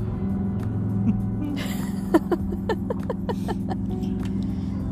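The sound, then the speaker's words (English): A steady low engine rumble from idling cars and motorcycles in a parking lot at a bar fills the background, with a burst of sharp, rapid ticks and pops midway, like a motorcycle engine. “Don't mind the motorcycles and the cars in the background because we're in a parking lot.”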